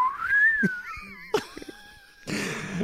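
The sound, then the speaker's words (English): A slide whistle glides up briefly, then drifts slowly downward in a long wavering tone, broken by a couple of sharp knocks and followed by a short burst of noisy rustle. “Just a slide whistle.”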